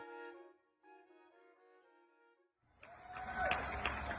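A sustained tonal sound fades out. Then a fairly loud, busy outdoor din rises and continues as people in Portland applaud and bang on pots and pans at 7 o'clock, with clapping and sharp metallic clangs and no one speaking.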